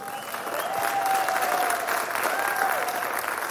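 round of applause

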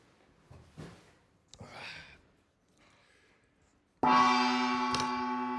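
gong being struck

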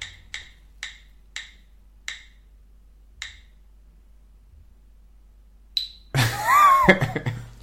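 spinning wheel clicking

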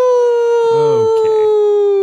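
wolf howl sound effect

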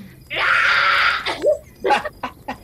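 person screaming

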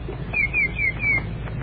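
wood thrush singing

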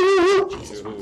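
dog barking

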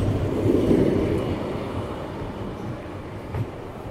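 tram arriving

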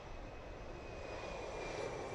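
airplane engine sound effect

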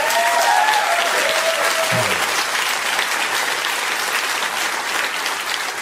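audience applause

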